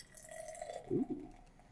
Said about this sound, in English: Gonna pop this Bock. My Bock! And the pour.